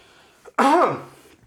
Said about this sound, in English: Anyway, that wasn't a sarcastic cough. No, it wasn't.